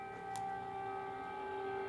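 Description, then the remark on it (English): An air raid siren holds a steady, sustained wail over Kiev, Ukraine's capital city, while it is under attack. Its tone drones continuously with a faint click partway through and no voices. “The sirens became the soundtrack of a capital city under attack today.”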